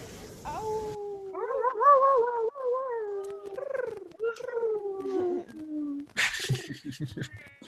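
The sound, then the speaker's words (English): Several voices imitate animals at once, with drawn-out wolf-like howls and higher yips and meows overlapping, loud, ending in a burst of noisy hissing sounds. “So just inviting everyone, we're going to unmute ourselves, and let's all make some more animal noises and send everyone some love, and we'll say goodbye after that.”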